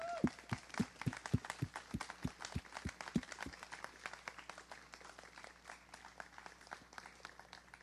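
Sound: audience clapping in applause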